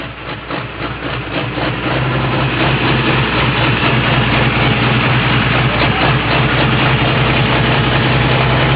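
A heavy International tractor called the Wampus Cat, entered by Greg Jaeger of Hazard, Nebraska, idles loudly, a steady, thick rumble with a deep throbbing drone that settles in after a couple of seconds and holds without letup.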